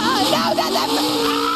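A Camry race car roars loudly and steadily through a turn on a track, its engine whine wavering in pitch as the tires squeal, continuous for the whole moment.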